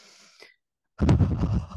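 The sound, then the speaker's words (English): A voice imitates the heavy breathing of a baby girl staring off into space: a soft airy breath, a brief silence, then one loud, raspy, wheezing breath, with no talking. “And she's staring off into space and she's breathing like this.”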